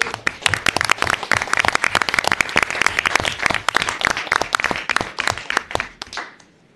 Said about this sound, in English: And commissioners, that concludes staff introductions. So let's greet everyone with a round of applause.